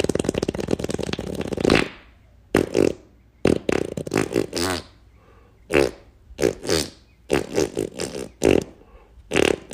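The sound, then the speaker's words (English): A fart song: a string of fart noises plays in a bouncy, song-like rhythm, a long sustained blast first, then a run of short, punchy toots separated by brief gaps, fairly loud. “So without further ado, I'm going to give you my latest fart song.”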